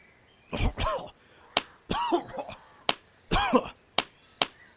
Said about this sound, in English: I coughed the water out of my lungs.